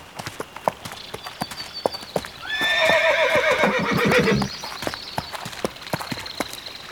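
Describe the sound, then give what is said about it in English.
A mare whinnies loudly in a long, wavering neigh lasting a couple of seconds, while steady hoof clip-clops sound throughout, before and after the call, as she is led to a stream to drink while her shoe is fixed. “My horse can drink water while I fix her shoe.”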